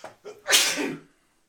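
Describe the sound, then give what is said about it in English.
A single loud sneeze with a couple of short sharp inhales leading into a bright, explosive burst that trails off quickly into silence. “Sneeze coming up.”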